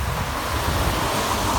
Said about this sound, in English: So, just let that car pass.